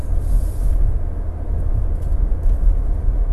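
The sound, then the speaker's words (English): A fire truck's heavy diesel engine rumbles steadily and loudly at a low pitch, without a siren, as the vehicle pulls in and settles; no one speaks. “Ah, fire truck here.”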